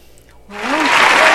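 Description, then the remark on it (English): A crowd bursts into loud applause after a brief quiet moment, clapping swelling quickly into a dense, steady roar of hands with a faint voice rising briefly at the start. “Well, thank you for the applause.”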